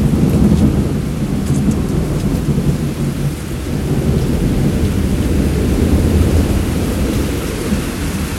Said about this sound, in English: Flash, boom, bang. Rolling thunder. This is no sound effect, folks. This is reality. Blinding lights, blowing rain. Thunder cracks.